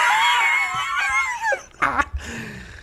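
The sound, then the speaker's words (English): A dog gives a long, high, wavering whine that bends up and down in pitch, then a shorter sharp yelp a moment later. Nobody is talking. “Hold on. Dog, stop. Sometimes the dog wants to get in on the action.”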